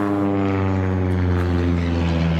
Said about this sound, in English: We've just been interrupted by a small aeroplane saying good morning to us as it flew low.